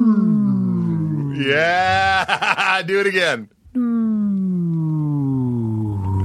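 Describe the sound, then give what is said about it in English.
A voice imitates a lightsaber humming to life, a loud, buzzing drone that swoops up and down, breaks off briefly, then resumes with a slow falling pitch. A short spoken remark is mixed in. “It's got an unsheathing quality. You know that sound, the Death Star thing when Obi-Wan turned it down.”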